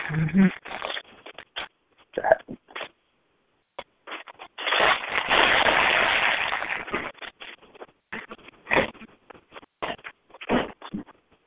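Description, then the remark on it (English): Someone chewing food: irregular, crunchy, wet bursts in quick succession, with a longer, steadier stretch of grinding noise midway. Moderately loud, with brief pauses between mouthfuls. “Hope you can hear me chewing.”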